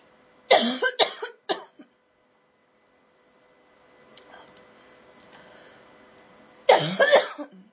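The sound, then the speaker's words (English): Someone coughs harshly after swallowing water wrong: a quick burst of three or four rough coughs, a quiet pause with faint clicks, then another loud cluster of coughing. “I swallowed my water wrong.”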